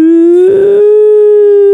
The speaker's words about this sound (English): After you sampled that siren and made your next hit tune out of it.